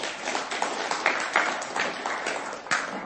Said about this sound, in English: And since we're clapping here, we have a couple other things to clap about.